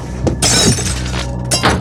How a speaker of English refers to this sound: The door! The door! It's not my fault. The lamp fell into it. 'Cause you tripped and...